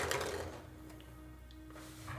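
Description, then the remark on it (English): Dice rattle and clatter inside a hollow skull: a busy burst of rolling at the start, a few scattered clicks in the middle, then another rattling burst at the end. No one speaks. “Rolling's got to be in the skull.”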